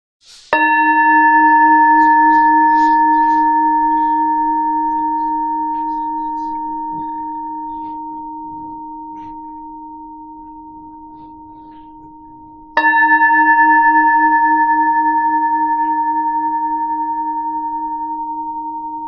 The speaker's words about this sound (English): Now, let us worship as we hear the sounding of the bell.